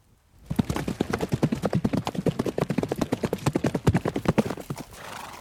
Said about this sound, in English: My horse!